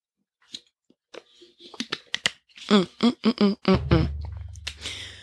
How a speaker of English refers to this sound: I am enjoying a lovely, you can't hear it, I'm swirling it around. Can you hear that? It's a lovely protein shake. Give it a quick sip.